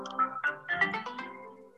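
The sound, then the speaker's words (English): A short, bright electronic jingle of bouncy synth notes rises and flutters for under two seconds as a game app is opened on a mobile phone, playing alone at moderate volume with no voices. “What was that? I opened up a game on my phone.”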